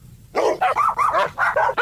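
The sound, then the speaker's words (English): Dogs bark in a rapid, continuous volley of about half a dozen sharp, high-pitched yaps, loud, with no talking. “We don't want these dogs getting mad.”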